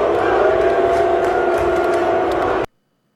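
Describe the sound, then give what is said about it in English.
A dense, roaring wall of stadium crowd noise, as heard by a camera on the field, loud and continuous with a steady low rumble and scattered shouts, then cuts off abruptly into silence after a couple of seconds. “that camera's on the field, so that's what they're hearing”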